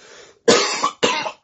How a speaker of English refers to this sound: Oh, my God. Sorry. The cough is still quite not gone. It just doesn't happen as often. Excuse me.